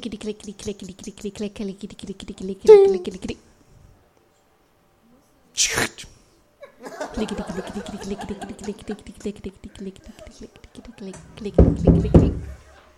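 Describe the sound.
A brief, sharp knock on a door lands in a pause between stretches of talking, followed by a heavier thumping burst near the end as voices continue.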